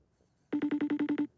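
A phone rings with a quick trill of about eight rapid electronic pulses, fairly loud, sounding once with no talking over it, as an outgoing call waits to be picked up.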